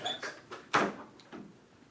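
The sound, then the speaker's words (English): A door is pushed shut with one firm knock in the middle, surrounded by softer rattling and handling noises from the door's movement. It's fairly quiet, with no voices. “You gotta have your door shut.”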